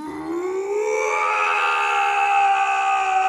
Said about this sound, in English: The stranger let out a loud yell.